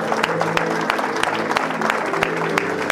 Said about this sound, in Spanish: Démosle otro aplauso al Señor así con sus manos en alto.